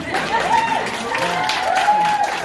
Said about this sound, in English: So you guys have mobilized that. So clap them one more time.